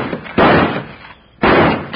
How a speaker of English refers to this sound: Then I can shoot this lock off. Stand back, will you, honey?